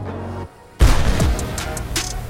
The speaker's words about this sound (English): For the very first time, the Postillon's cannons roared, hurling cannonballs through the enemy ship and leaving its hull in tatters.